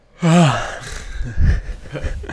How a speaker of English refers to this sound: He's yawning.